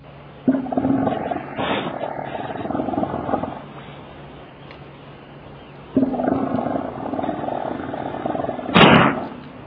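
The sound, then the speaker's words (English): Two long, deep guttural calls from Antarctic elephant seals, each lasting a few seconds with a harsh, throbbing roar, separated by a pause, followed by a brief rough burst near the end; loud. “For animals, birds, and humans, the Arctic is home, as the Antarctic is for the elephant seals that you hear.”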